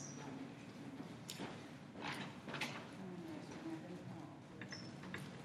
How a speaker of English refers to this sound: I just opened up this Bible I wanted to show you.